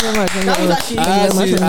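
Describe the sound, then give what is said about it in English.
A handful of sharp claps land at a steady, quick rhythm while a voice carries on over them, the clapping fairly loud but partly blended into the vocal sound. “You said it, babe. Clap for me.”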